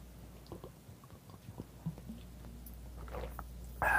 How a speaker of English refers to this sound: Let me just have a sip of water here.